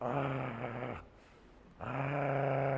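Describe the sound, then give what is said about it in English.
A dog growls twice, loud, each deep rumbling growl lasting about a second with a brief quiet pause between them. “I ain't getting close to that, because that loyal dog chewed me up”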